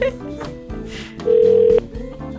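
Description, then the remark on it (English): A telephone sounds a single steady electronic tone, like dialing or a ring, as Hot Country 103.5 radio in Halifax phones Kenny's, lasting about half a second over a busy musical background with faint voices. “We'll phone you.”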